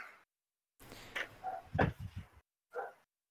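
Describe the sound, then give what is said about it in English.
A neighbor's dog barks in a short, irregular burst of several yaps, followed by a pause and one more bark. It sounds muffled, with no one talking. “My neighbor's dog won't shut the fuck up.”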